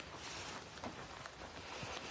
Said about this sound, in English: Wait a minute. Now it's starting to rain just a little bit. Or maybe a lot. Oh man, it's really starting to rain.